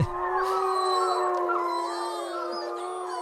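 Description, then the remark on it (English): Several wolves howl together in long, sustained, overlapping tones that waver in pitch, a steady chorus filling the whole stretch with no talking. “And of course, I've also included some howling wolves because, you know, no full moon would be complete without a stereotypical howling wolf.”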